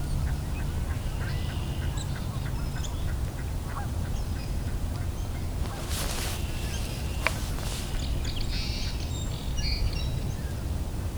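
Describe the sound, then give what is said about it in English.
Mallard ducks quack and cackle in scattered bursts over a steady low rumble, with a louder flurry of calls near the middle and faint small-bird chirps in the background. “You can hear some mallards cackling.”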